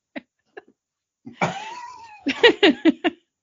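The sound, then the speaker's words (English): A cat lying on a person's face gives a drawn-out meow rising and falling in pitch, preceded by two faint clicks and followed by a quick series of short, sharp vocal bursts. No talking. “Cat on my face.”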